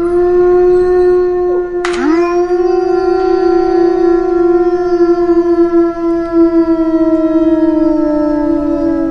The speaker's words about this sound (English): Those are the actual sounds of wolves.